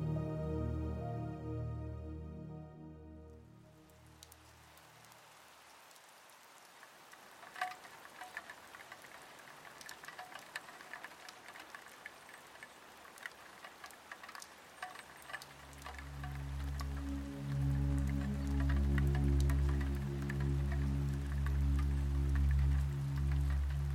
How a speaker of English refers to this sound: A delicate rain pattering on the glass gently eases Lily into wakefulness.